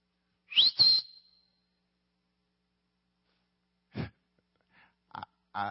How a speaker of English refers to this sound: I knew that whistle. That's the whistle I heard at Walmart when I was in aisle 6.